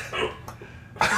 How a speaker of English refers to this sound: Yeah, I got the hiccups.